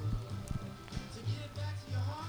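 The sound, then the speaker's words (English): Steady, soft patter of rain falling outside an open window, a diffuse hiss mixed with occasional sharp crackles from a fire next to the mic and a low, muffled musical hum from a Bose SoundLink Mini speaker. “It's raining outside. I have a window open.”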